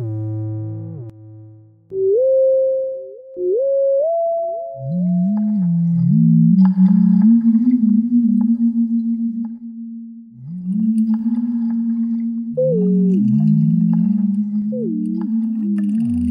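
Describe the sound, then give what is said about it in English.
Synthesized whale sounds made in a web toy by dragging the mouse around: smooth, sustained tonal moans that slide and bend in pitch, low groaning tones layered with higher gliding whistles, continuous and fairly loud, with no voices present. “where you can choose any sort of like whale or dolphin or orca, and then you just drag your mouse around and it makes whale sounds.”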